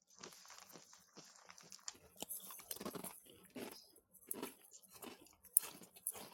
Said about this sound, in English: It's not just habanero, it's got some flavor to it. I would say this popcorn just keeps getting better with each bite. You know, you let the heat build up a little bit, and then you just keep throwing back the fluffy light popcorn